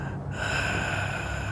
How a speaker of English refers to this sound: is that you breathing?